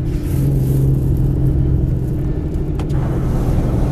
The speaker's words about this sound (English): Something just got caught under my car. It's all good. As long as it's not a tire, I would let you know if it was a tire.